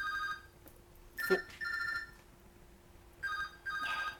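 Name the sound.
phone ringing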